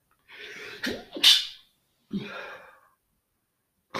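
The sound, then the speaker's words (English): A forceful sneeze bursts out after a sharp inhale, followed by a breathy exhale or second snort, then silence and a brief sound cut off at the end. “Sorry for the sneeze there, guys.”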